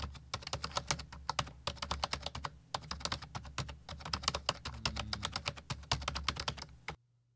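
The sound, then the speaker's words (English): Rapid, steady typing on a computer keyboard, a dense run of crisp clicking keystrokes for about seven seconds, with no voices, then it stops abruptly. “Yeah, let me put a keyboard sound.”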